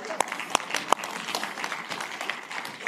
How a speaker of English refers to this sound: So, yeah, clap for the person next to you saying, way to go, revivalist guy.